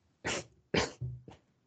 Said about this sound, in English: No, she's not. She was sneezing. But it looked like she was laughing.